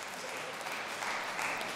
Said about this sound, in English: You're going to clap that? Who clapped that? Stand up, who clapped that?